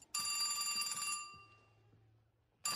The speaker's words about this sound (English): and that's when the phone rang. What in the world? Do you want me to pause it? I'm sure it's just the wrong number.